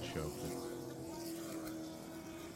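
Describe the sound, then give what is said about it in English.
A late model race car engine drones at steady high revs during a race, a loud, continuous buzzing roar that holds its pitch for a couple of seconds before easing off slightly. “here's a video. Oh yeah. So Travis's car is in fifth, right?”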